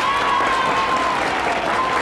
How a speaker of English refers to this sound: The crowd erupted in cheers, but not everyone was happy.